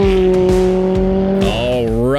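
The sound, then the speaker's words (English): A race car engine on Pikes Peak roars loud, holding a steady drone before revving upward in pitch, with a sharp, high tire squeal cutting in partway through. “next guest had a hand in making those car sounds on Pike's Peak, and his name is Amir Bentatou, and listeners of my show may recognize him.”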